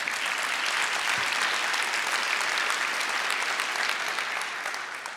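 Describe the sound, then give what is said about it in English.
A crowd applauds steadily after a speaker announces they are expecting a baby girl in about 3 to 4 weeks, a dense, loud wash of many hands clapping that holds for several seconds before tapering slightly at the end, with no voices standing out. “Don't clap yet.”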